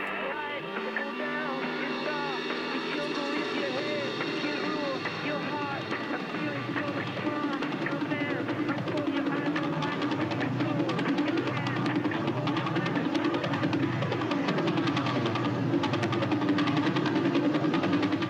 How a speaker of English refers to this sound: Sound is the telltale buffeting of radiation from a spinning neutron star, more commonly known as a pulsar. The rate of that buffeting sound results from how fast the star is spinning.